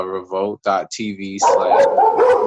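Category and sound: animal, dogs barking loudly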